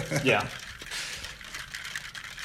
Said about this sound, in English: If you can hear my water bottle, I'm stirring up another emergency.